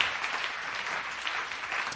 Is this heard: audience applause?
yes